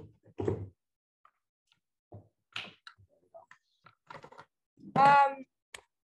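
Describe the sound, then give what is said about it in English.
Irregular clicks, taps and soft thumps of someone fumbling to plug in a device, with quiet gaps between and a short voiced murmur near the end. “hold on, I got to figure out how to plug, got to figure out how to plug this in.”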